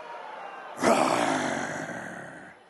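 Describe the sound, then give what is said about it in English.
A church audience bursts into a loud, sustained roar, many voices imitating lions together, swelling suddenly and then slowly fading over a couple of seconds. “Can I hear a roar in this place?”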